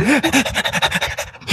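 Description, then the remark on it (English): A dog pants rapidly and steadily, a quick run of rhythmic breathy huffs, with a brief high whine at the very start. “Why are you letting the dog make our decisions? Because he's a good boy!”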